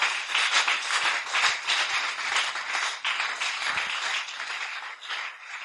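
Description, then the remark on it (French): An audience claps for God steadily for several seconds, a dense, sustained wash of many hands with no pauses and no voices standing out. “Let's clap for God.”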